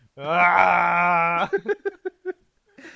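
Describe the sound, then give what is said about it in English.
A voice imitates Frankenstein's monster's roar in a bedroom with the lights off, with one long, steady, strained bellow, then breaks into five or six short, rhythmic vocal bursts before a brief breathy rush at the end. “Just practicing my roar.”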